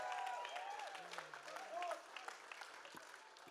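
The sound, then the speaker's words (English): A crowd applauds the keyboard player steadily, dense clapping filling the whole stretch, with scattered whoops and voices rising through it. The ovation stays loud throughout. “Come on, give it up for him.”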